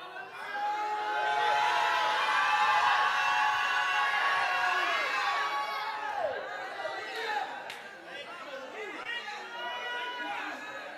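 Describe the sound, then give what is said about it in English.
An audience shouts and praises God and Jesus together, many raised voices overlapping in a loud, continuous roar of cries and exclamations that eases slightly in the second half but keeps going throughout. “If you knew what Jesus did for you, you would open up your mouth and scream as loud as you could shout.”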